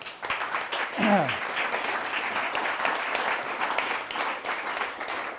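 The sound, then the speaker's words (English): An audience applauds steadily to welcome a speaker before a talk about a book, a dense, even wash of clapping that holds for several seconds, with a brief voice-like call rising over it early on. “It also gives me time to sit down and find my notebook, you see, when they applaud, which is good.”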